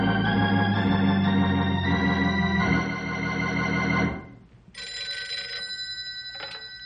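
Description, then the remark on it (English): A field telephone bell rings loudly and continuously for about four seconds, stops briefly, then a second, slightly thinner burst of ringing follows, with no voices. “I will run to closest field phone and call him.”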